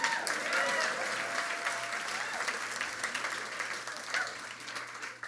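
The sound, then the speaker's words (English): An audience applauds steadily for about five seconds, many hands clapping in a dense, continuous wash that stays fairly even before tapering slightly at the end. “Everyone applauds. I said everyone applauds.”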